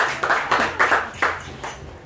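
An audience claps for the next contestant being introduced, a short ragged round of applause with a few sharper claps standing out every half second or so, moderately loud and without any voices.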